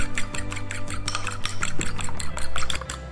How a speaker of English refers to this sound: So I've got one egg here. I'm just gonna crack the egg into a bowl. And then to that, just add a splash of milk. I like to use a fork to whisk this together. And just whisk the egg and the milk.